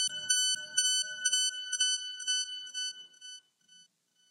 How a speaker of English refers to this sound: Thank you to alarms that go off randomly, and I did not jump today.